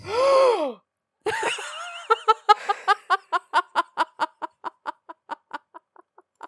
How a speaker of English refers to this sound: I have never heard you gasp so fucking loudly. Oh my god. The waveform for that is bigger than anything else that I've seen on here.